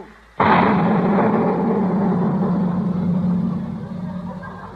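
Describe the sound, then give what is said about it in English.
A cannon fires a giant firecracker: a single loud blast erupts suddenly, then a long rumbling roar lingers and slowly fades over several seconds, booming. “What in the world did you put in that cannon? It was just sort of a giant firecracker,”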